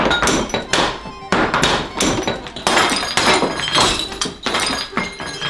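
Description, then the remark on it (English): A rapid cascade of 20 pots falling off a wall in a chain reaction, crashing down and smashing, one loud clattering impact after another with ringing, glassy breakage and scattering shards, continuous for several seconds with no voices. “Then that triggers 20 pots to fall off the wall and smash.”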